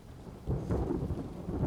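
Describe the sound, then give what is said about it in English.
A low, rolling rumble of thunder overhead, with lightning, swells over steady rainfall, the deep roar building after a moment and lingering throughout, moderately loud with no voices. “A little bit of thunder and lightning happens.”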